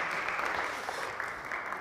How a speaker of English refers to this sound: Can we give a big round of applause